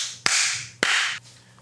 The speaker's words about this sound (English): So, in true elephants in the room spirit, we have to clap. That's just how it helps me edit, so it syncs the clip. So on 3, 2, 1.